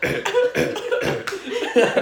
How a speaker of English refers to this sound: He's coughing in a blanket.